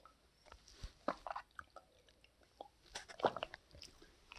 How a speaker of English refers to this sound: Excuse me while I have a glass of water.